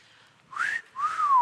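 A person whistles two short, breathy notes, the first rising and the second gliding slowly downward, with plenty of airy hiss around the tone and no talking.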